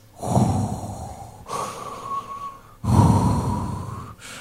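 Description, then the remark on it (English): Deep, heavy breathing through scuba gear underwater inside a shark cage, in a slow, steady rhythm: long rasping inhales alternate with hissing exhales carrying a faint whistling tone, about two full breath cycles with no talking. “And then all I could hear are my deep Darth Vader-y breaths.”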